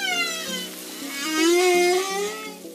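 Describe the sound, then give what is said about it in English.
Humpback whale song: a long, eerie tonal moan that slowly rises and falls, rich in harmonics, sounding alone against a faint underwater backdrop with soft regular pulses. “The haunting song of the humpback whale.”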